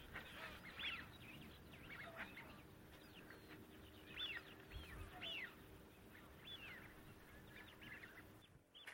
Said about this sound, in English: The shell duck far out on the marsh, lots of shell ducks.